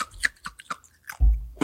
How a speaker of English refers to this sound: How's that crunchy ice? Delicious.